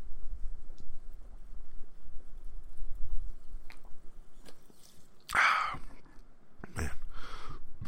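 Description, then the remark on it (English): A quiet stretch of low rumble, then a wet slurping sip of a drink and a second, shorter gulp-like sound, with faint smacking noises in between and no talking. “Take a quick sip of my drink.”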